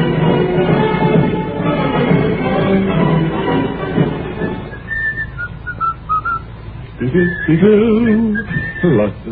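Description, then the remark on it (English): Someone whistles a brisk, march-like tune in clear, bright notes, rising out of a busy, murmuring background that fades partway through, leaving the whistled melody more prominent. “Every now and then we take a survey to see how many people are whistling marches on the street.”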